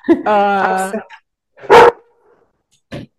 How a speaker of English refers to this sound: Hey, I got a little dog that I have to hire, because if she sees anybody who goes by, she'll start barking at them.